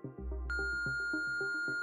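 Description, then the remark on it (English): A steady, high-pitched electronic answering machine beep cuts in after a short moment and holds unbroken to the end, sounding over a low droning tone with soft rhythmic pulses beneath. “Please leave a message after the beep, and she may return your call.”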